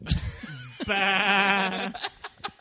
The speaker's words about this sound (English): Just remember the sheep noises.